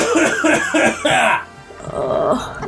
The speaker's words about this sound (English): With the coughing!